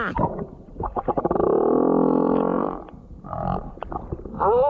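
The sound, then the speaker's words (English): An underwater song of a male humpback whale looking for a mate, recorded in the Pacific near Fiji by a person in the water very close to it: a long, groaning moan swells and holds, then rises into higher whoops and creaks, loud, with no talking over it. “would this move you as a lady humpback whale?”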